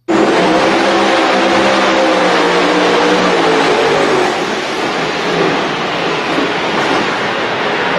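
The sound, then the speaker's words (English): A twin-turbo, ethanol-fuelled pulling truck's engine roars loudly and continuously for several seconds, with a dense, rumbling blast of noise and steady revving tones underneath. No one speaks. “So for those who aren't familiar with that truck, I mean, what's really cool about it beyond the body style look of it and it being a twin turbo versus supercharged, he does run actual ethanol in it.”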